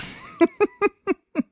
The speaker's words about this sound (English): Now, I downloaded a new soundboard just for this conversation. Oh, good. It's called iFart.